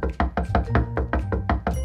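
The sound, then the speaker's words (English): A quick, steady run of about eight solid knocks on the back of Little Hedgehog's wooden bookcase in his burrow, fairly loud, with a low musical hum underneath and no talking. “Someone was knocking on the backside of Little Hedgehog's bookcase.”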